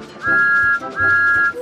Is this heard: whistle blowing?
yes